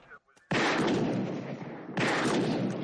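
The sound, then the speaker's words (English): Two loud, booming gunshots fired at a police radio, about a second and a half apart, each with a sharp crack followed by a long, rumbling decay; a faint voice is briefly audible just before the first shot. “Shoot the radio. The police radio, Louise.”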